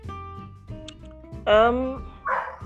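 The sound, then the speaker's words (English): A dog barks loudly, a sharp harmonic bark followed by a shorter yap, over a quiet background with faint talking. “My dogs, why today?”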